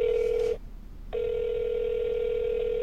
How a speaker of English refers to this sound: All we have is Jack's phone number. Make that call. All right, let's go. I dial the number.